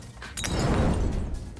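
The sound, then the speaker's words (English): A glass bottle, a Molotov cocktail, smashes with a sudden, loud crash as two men crash together, followed by a second of scattering, tinkling debris and rough noise, with no voices. “So, while it sends him careening, the guy in the back had a Molotov in his hand. He did not throw it away fast enough, so they crash together and it smashes on him.”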